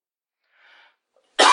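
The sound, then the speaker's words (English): A faint breathy rasp, then after a short silence a single loud, sharp cough bursts out and is cut off abruptly at the end. “That's the get your coughs out of your fucking system.”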